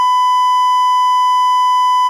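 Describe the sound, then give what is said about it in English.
A beeper gives one loud, steady electronic buzzing tone that holds unchanged for about two seconds and then cuts off abruptly, with no voices or other sounds around it. “You need to get a hold of that beeper buzzing because I'm about to go off.”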